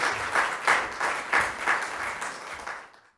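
Laver Cup staff on the sidelines applauding Roger Federer as a send-off, a steady crackle of many hands clapping at once with a few louder rhythmic swells, fading out over about three seconds.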